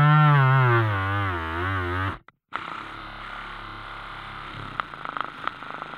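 A small milk blender with blue tack, picked up by a Jesriley French contact microphone: a loud, buzzing motor hum with a wavering pitch, a brief cut to silence, then a rougher, gritty rattle with scattered clicks.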